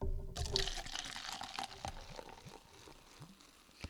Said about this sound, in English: All right, we'll let that fizz down. That's the one thing I hate about soda, is that it just takes, some sodas take forever to like defizz.